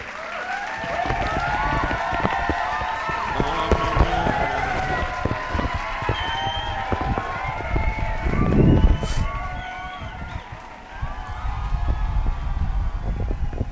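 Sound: applause sound effect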